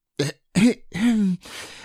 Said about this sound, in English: Pooh gave a little cough and began.